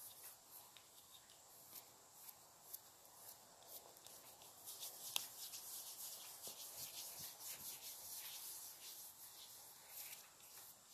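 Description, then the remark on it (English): Soft rubbing and smoothing of rose-scented cream for sensitive skin into the skin of a face, a continuous hushed swishing with faint slick, moist squelches and occasional light taps, steady throughout with no voices. “Now let's rub it in.”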